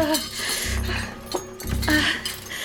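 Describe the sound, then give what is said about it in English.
Metal pans and tools, including a heavy cast-iron frying pan and a lead pipe, clink and clatter as they're shuffled around in a search for something to use as a weapon, a busy run of knocks and scrapes with sharp clanks standing out. “All right, okay, there are tools here. What can be used as a weapon? There's gotta be something. A frying pan, cast iron, heavy, a lead pipe.”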